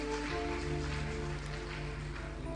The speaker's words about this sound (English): It's a good place to clap, please.